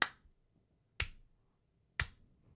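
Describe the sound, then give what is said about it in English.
Three sharp hand claps ring out alone, evenly spaced about a second apart, each crisp with a brief fading tail, like a man clapping while sitting on his porch or at the end of a driveway. “And then he clapped a couple times, right?”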